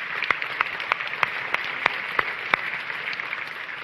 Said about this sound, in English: Okay, you can applaud that.